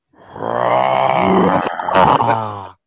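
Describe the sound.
A man imitates a lion's roar for the Detroit Lions, with one long, gravelly, growling bellow that swells loud, wavers, and trails off after about two and a half seconds.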